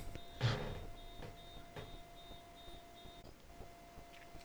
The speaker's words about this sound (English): I don't know if you guys could hear the beeping in the recording, but my neighbor's car's alarm went off, and it was quite disconcerting. I had to check it out.